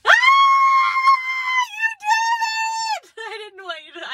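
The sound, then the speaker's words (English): A loud, high-pitched celebratory scream from one voice, held in two long sustained bursts before breaking into shorter, wavering cries at the end. “Okay, earmuffs, because I'm about to scream real loud.”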